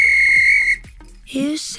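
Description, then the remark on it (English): A referee's whistle gives one long, loud, steady blast lasting under a second, followed after a short pause by a brief burst of other noise. “If this were a real bit of extra time, this is when the ref blew the whistle.”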